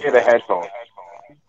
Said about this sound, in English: Man, this is on echo. It's like an echo.